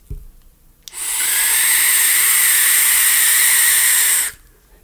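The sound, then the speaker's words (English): A loud, roaring hiss from a vape hit on a Magma Reborn RDA bursts on suddenly, holds steady for about three and a half seconds with shrill whistling tones on top, then cuts off abruptly. “It sounded like a jet engine. It sounded like a space shuttle ready for launch. It's just so freaking loud.”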